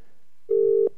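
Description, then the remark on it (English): A single steady electronic telephone ringing tone over a phone line as a Hot 92 radio host calls a guest to talk live on air, one short burst after a moment of near silence, clear and fairly loud with no voices. “Yep, it's ringing.”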